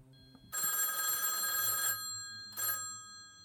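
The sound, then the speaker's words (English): An old-style telephone bell rings loudly in a long burst of about a second and a half, then a shorter second ring follows after a pause, clear with no voices; a phone ringing at 8 p.m. “It is 8 p.m. when the phone rings.”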